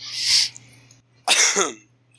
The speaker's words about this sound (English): And that's why you have a cough today. No, that's... That would be the cold I got.